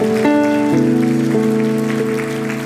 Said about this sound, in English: If you believe it, give God a clap offering right now.